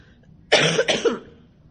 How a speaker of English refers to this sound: And so, I like have this awful cough, which is just wonderful.